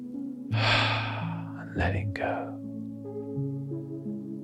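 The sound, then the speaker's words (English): A slow, deep breath drawn into the belly and released, soft airy rushes over a sustained, calm musical drone that continues underneath. “Breathing into the belly, feeling it gently open and expand, and letting go.”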